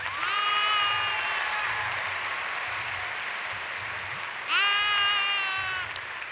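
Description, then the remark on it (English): Steady audience applause for the lamb and the lion runs throughout, a dense wash of clapping, while two long, wavering sheep bleats ring out over it, one at the start and another near the end. “Let's give it up for the lamb and the lion.”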